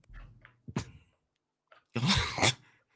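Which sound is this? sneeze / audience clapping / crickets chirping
sneeze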